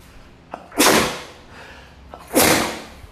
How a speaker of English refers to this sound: We almost made it a full episode without me sneezing or coughing, so yay.